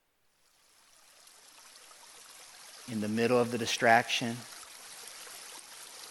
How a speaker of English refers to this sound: in the middle of the noise, there's a sound. It's like a rippling brook. It's like a river that literally God is inviting you to plant your life into.